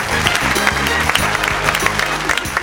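Steady applause from a crowd, a dense, crackling wash of many hands clapping at an even level, with low sustained tones humming underneath throughout.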